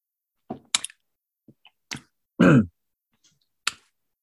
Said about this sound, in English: And I'm going to have a sip of water while you do that.